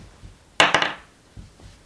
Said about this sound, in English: Against the barbarian, and then I roll my dice. And I probably don't hit.